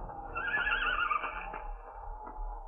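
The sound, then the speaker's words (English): A mare hiding in a gully on a ranch as a storm approaches whinnies once, a shrill, quavering neigh that rises and fades over about a second, followed by quieter snorts against a low, steady rumble of wind in the background. “Dwarfed by the landscape and buffeted by the approaching storm, the boy struggles over rocky ledges in answer to a familiar sound.”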